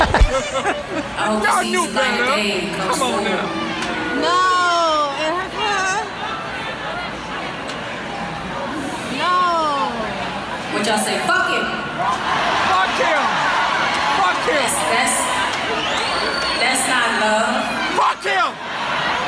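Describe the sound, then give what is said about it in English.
A crowd reacts loudly in agreement with a singer, with overlapping shouts, whoops and excited chatter rising and falling for the whole stretch, several voices breaking into rising calls of agreement over a steady hubbub. “People in the crowd are really, you know, in agreement with … at this moment.”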